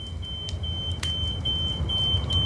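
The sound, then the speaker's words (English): A smoke alarm sounds a steady, shrill high-pitched tone over a low rumbling background, with a couple of brief clicks cutting through. No one speaks. “Are you sure your smoke alarms are working?”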